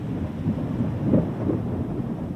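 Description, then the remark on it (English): A steady, dense wash of heavy rain pouring down, with a low rumbling undertone that swells slightly midway through; no voices, just the continuous roar of the downpour. “The rain's really coming down now.”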